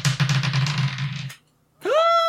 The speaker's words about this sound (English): So, okay, I'm gonna try to. Come on, sweet dice. Roll.